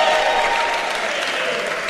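An audience applauds steadily, a dense wash of many hands clapping at an even, sustained loudness with no voices rising above it.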